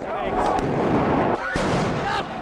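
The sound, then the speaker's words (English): Sharp, loud flashbang grenade blasts from police in riot gear confronting protesters burst out over a constant wall of harsh noise, with a couple of distinct bangs punctuating the din and voices faintly mixed into the chaos. “Thousands of officers on site, many this in riot gear, confronting them with flashbang grenades and pepper spray.”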